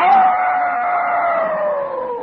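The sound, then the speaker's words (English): A person's voice imitates a female dog's howl, one long sustained wail that slowly slides downward in pitch, loud, with no talking. “The wild girl dog called to the boy dog, at first from a distance, like this.”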